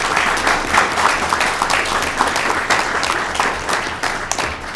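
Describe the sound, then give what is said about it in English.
A crowd applauds steadily, dense overlapping claps forming a loud, continuous wash of sound that holds for the whole stretch before easing slightly at the end. No one speaks over it. “So let's give Jenny. Jenny a big round of applause.”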